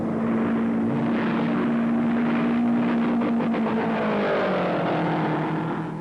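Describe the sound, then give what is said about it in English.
The powerful engine of the Novi race car, driven by Tony Bettenhausen during qualifying on a closed oval race course, roars loudly and steadily at high revs as he puts his foot on it, its deep drone holding for several seconds before the pitch begins to climb and shift near the end. “He stroked the powerful engine for a lap or two and then put his foot on it.”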